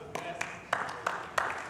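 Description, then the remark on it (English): Four separate hand claps and one grunt from the audience at a church service, the claps sharp and evenly spaced about a third of a second apart, over a low murmur of background noise, with no sustained applause. “Thank you for those four hand claps and that one grunt.”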